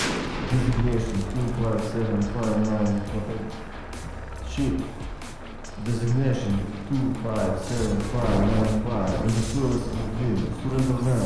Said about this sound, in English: Puffs of dust and fuzz flew around us as they returned fire through our concealment.